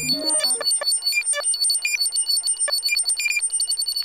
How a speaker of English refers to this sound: And you can get such a wide variety of sounds. You can get all of those interface type sounds.